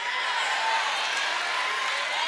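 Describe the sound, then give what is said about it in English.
An audience claps steadily for a couple of seconds, a dense, even wash of hand claps with no pauses, with a faint crowd murmur blended in. “I'm glad you clapped.”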